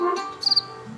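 A cricket chirps in a quick burst of three or four high, shrill pulses, with another chirp starting at the very end, over a faint low hum.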